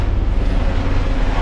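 A helicopter drones steadily overhead, a loud, continuous low rumble with a throbbing rotor undertone that fills the whole moment without any voices.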